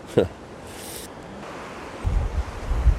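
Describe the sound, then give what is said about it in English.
Wind gusts sweep across a riverbank where someone is fishing, a steady airy rush that swells into heavy, rumbling buffeting against the microphone over the last second. “Oh, there's a big breeze. They're coming in gusts, so I just let them pass.”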